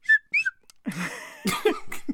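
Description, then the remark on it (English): Two quick, bright slide whistle toots glide upward in pitch, fairly loud, then give way to people talking and laughing. “I got a slide whistle.”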